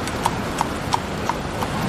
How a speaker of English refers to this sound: But just before dawn, a carriage came rolling up.